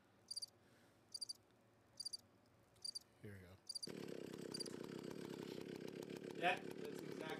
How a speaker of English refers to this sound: Oh wait, well hold on. I'll put me snoring. Hold on. I'll put a sound on.